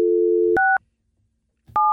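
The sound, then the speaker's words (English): A steady telephone dial tone cuts off into a short touch-tone beep, then after a pause of silence a second keypad tone sounds, clear, as a number starting with area code 513 begins to be dialed to call Moviefone. “You supposed to still dial 1 now or not? No. You just have to dial 513.”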